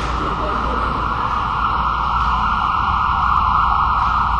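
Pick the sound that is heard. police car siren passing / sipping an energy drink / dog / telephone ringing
police car siren passing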